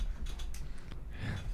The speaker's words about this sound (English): Well, I can, but my chair rolled away.